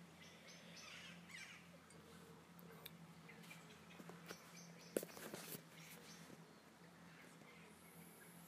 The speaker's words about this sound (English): As you can hear, there's some lovely pigeons in the tree just nearby.